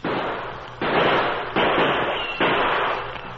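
Four loud gunshots fire in an even rhythm in a dark tunnel studded with big boulders, each blast ringing out with a long, echoing tail through the tunnel before the next one cracks. No voices are heard.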